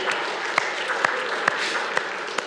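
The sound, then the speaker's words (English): A lone pair of hands claps about six times in a slow, steady rhythm, each clap a sharp crisp snap over a constant soft background hiss of the audience. “Who's clapping?”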